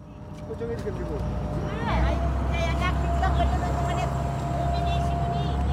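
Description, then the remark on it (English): The motor of an old blue industrial fishing boat drones low and steady, then swells louder and deeper about two seconds in as it picks up speed, with faint indistinct voices and chirpy sounds above the rumble. “We board this industrial old blue fishing boat. The motor starts to pick up speed, and then the women start to gear up.”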